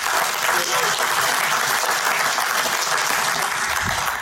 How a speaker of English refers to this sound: I think we can all agree and give him a big round of applause for the incredible job he's done here this weekend.